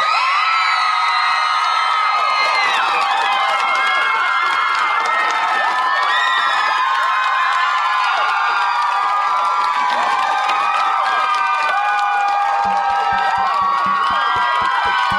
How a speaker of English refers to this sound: If you think Harry's going to die, leave. No. Make make noise now. You're cheering for death every show. I'm stunned by this.